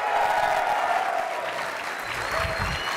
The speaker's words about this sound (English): And how many people think Metal Gear Solid Peace Walker is? Yeah. Okay. That was like applause for Greg Miller.